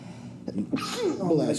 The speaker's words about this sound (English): Oh, wait, he's about to sneeze.